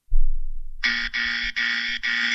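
A harsh electronic game buzzer sounds four times in quick succession, loud and close, each blast brief and separated by tiny gaps, after a moment of low rumbling.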